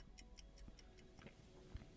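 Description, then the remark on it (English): A clock ticks steadily in a quick, even rhythm, about ten soft ticks over a low background hum, with no one speaking. “It takes you a few minutes to adjust, for your senses to pick out and replace the sounds that remain, like the soft roll and breaking of waves, or the ticking of a clock.”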